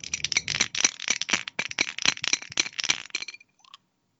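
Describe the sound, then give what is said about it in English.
A six-sided die, rolled to pick a contest winner, clatters rapidly inside an official 2 half squad shot glass for about three seconds, a dense, bright rattle of sharp clicks that stops abruptly, followed by one last faint tap. “I'm going to use an official 2 half squad shot glass for our to tumble the dice in.”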